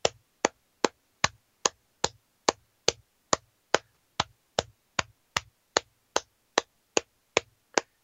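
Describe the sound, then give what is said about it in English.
A man claps steadily for Jason Mitten, about nineteen sharp, crisp claps at an even, unhurried pace across eight seconds, with nothing else heard around them. “The only thing better than Jason Mitten is the man clapping for him right now.”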